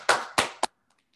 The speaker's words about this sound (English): Let's clap it up for Hotep Jesus real quick. Yes, sir.